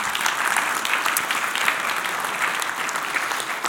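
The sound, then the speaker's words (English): An audience claps steadily to show appreciation for a family, many hands producing a dense, even patter of applause at a fairly loud level throughout, with no voices standing out. “A clapping might seem a little bit weird.”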